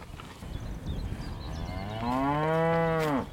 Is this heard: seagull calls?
no